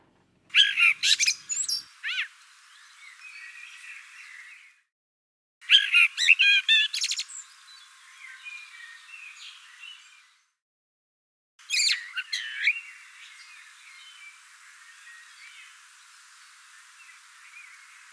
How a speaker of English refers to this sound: You can hear these two parts here, in this extract of a bird's song.